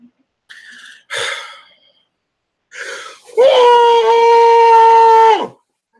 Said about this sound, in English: I'm going to try to yell inside of a pillow because a lot of people say that this is a good stress reliever